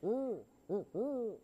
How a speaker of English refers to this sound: he's a Eurasian eagle owl, by the way, this guy and our great horned owl, they're hooting up a storm. We have a 20-acre farm outside of Wake Forest where we have our sanctuary. And if you're out on our property late at night, you'll hear this.